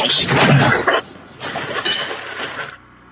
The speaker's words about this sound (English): Okay, then you fill your glass with ice. Was this new ice? Or was it? Oh, here. Yeah. Yeah. Fill glass with ice.